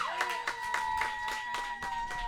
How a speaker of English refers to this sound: We're going to have an applause-off. Oh, man. Applause-off with your draws-off. So everybody, give a round of applause